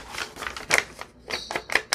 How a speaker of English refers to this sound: Crinkly paper. Something about when it gets coffee on it, it takes on a different feel. You can feel the difference between this and this. This is crunchier. This is smoother. Or softer. Maybe that's a better way.